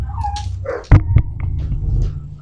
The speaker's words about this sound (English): We may have a fight going on. Sounded like a dog fight. It did. Oh, it is.